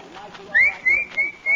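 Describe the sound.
Someone whistles in a few short, shrill bursts, like calling a dog over, clear against a faint background murmur.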